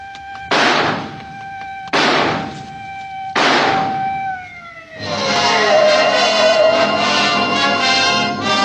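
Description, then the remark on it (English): Three loud, sharp gunshots, fired through a smashed window at a man in the street below, crack out at an even pace, each one ringing briefly. Then a harsh, continuous noisy roar takes over and carries on to the end. No one speaks. “I smashed the glass with the butt of my gun, then I took aim.”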